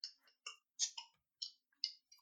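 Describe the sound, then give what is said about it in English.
A beer being opened: a quick run of sharp metallic clicks and short hissy bursts, about six in a little over two seconds, with no talking. “That was a beer opening, yes.”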